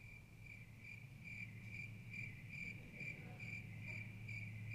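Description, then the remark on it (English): Crickets chirp in a steady, rhythmic trill that pulses evenly throughout, over a low constant background hum, like a quiet night outdoors with no voices. “All God's people heard was crickets.”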